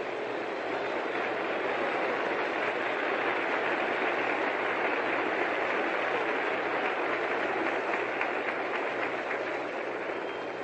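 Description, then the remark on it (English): A large Detroit baseball crowd applauds pitcher Claude Passeau steadily for about ten seconds, a dense, even wash of clapping with no voices rising above it, holding at full strength throughout. “Here's a big hand for Claude Passeau.”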